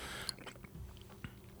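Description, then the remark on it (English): Soft wet chewing of a maraschino cherry with a few quick bites and squishy mouth noises, steady over a short moment with no talking. “That's like $3 worth of maraschino you just had.”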